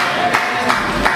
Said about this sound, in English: If we're going to clap, we got to clap right there.